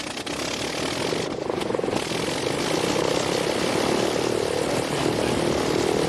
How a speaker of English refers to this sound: it'll show a start-up sequence and a flight of the Blackburn, which is a rotary-powered aeroplane. See each cylinder being charged in turn.